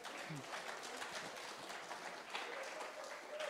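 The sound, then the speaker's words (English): An audience applauds the actors steadily, many hands clapping in a dense, continuous wash of noise that holds at an even level throughout, with no voices rising above it. “Big round of applause for our actors.”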